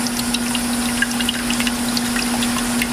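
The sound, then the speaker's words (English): A thin, steady trickle of coconut water draining out of one hole in a coconut while air gets in through another hole, with scattered little drips, set against a constant low mechanical hum; nobody speaks. “Is because you want to have air to get in one hole to let the milk out of the other one.”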